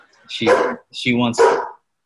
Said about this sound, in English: Sorry, my dog is barking in the back.